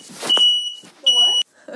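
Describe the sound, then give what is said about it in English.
A smoke alarm in a house, set off by a lit candle, sounds two loud, piercing high-pitched beeps, the second longer and cut off sharply, with a voice briefly audible underneath. “Well, the fire alarm works, and we didn't burn the house down.”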